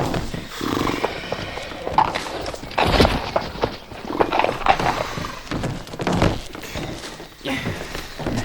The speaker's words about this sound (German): Dann führten sie ein Pferd nach dem anderen heraus.